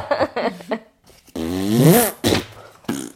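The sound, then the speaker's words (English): A loud, drawn-out fart sound effect with a rising, buzzing rumble, followed by two short bursts of sputtering noise, prominent with no talking. “Jurassic farts are huge gas bombs with dino-sized roars and smells.”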